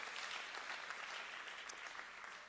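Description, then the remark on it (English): A crowd applauds in praise to the Lord with steady, dense clapping that holds a constant level throughout, a broad wash of many hands with no voices standing out. “Somebody ought to clap your hands to the Lord and give Him praise for that tonight.”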